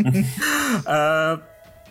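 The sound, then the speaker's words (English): A voice imitates a long, drawn-out yawn, rising into a strained open-mouthed moan and then sliding down into a sigh, fairly loud, fading off at the end. “who sort of yawns.”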